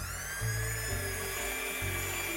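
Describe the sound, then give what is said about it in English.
A handheld blender whirs steadily through eggs added one at a time, a continuous high motor whine with a low churning rumble that shifts slightly in pitch as it mixes, with no talking. “And I've got a little handheld blender, and let's blend.”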